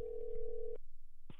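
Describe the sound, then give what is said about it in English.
A telephone ringback tone while calling someone: one steady electronic buzz lasts nearly a second, cuts off into a short silence, then the next ring begins. Clear, as if heard through the handset, with no talking. “It's ringing.”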